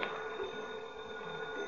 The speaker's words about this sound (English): will you please answer that phone?